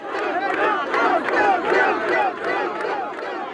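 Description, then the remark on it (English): A large crowd at David Duke's election night party roars and cheers his win continuously, a dense wash of many overlapping voices shouting and whooping with loud swells throughout. “That's the crowd at Duke's election night party, recorded by Plater Robinson.”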